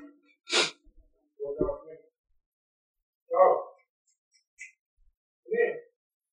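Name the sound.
dog barking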